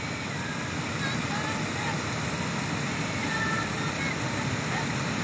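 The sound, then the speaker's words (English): A steady, unbroken roar of falling water, like a waterfall, holds an even loudness throughout with a dense hiss and no pauses or distinct events. “Hear the sound of the fall.”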